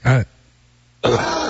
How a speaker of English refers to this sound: What is gravy caught in your throat? Do you want to clear your throat?